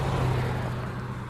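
A car passes by, its engine a steady low rumble with a broad wash of road noise that eases off slightly toward the end. No one speaks.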